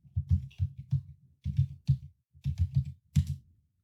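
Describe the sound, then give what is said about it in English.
Clattery typing on a computer keyboard, bursts of rapid key presses separated by brief pauses, with no voices. “More cowbell. More typing.”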